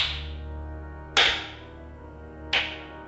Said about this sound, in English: Sarcastic clapping comes from the other side of the cavern.